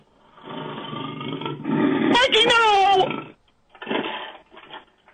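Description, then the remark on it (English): Amid shouting voices, a loud revving chainsaw sound, likely imitated by a voice, buzzes for about a second with pitch rising and falling before the voices carry on. “your arms have become chainsaws!”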